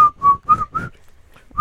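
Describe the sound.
Someone whistles a short melody: four quick, clear notes in a steady rhythm, a brief pause, then another note begins. No talking over it.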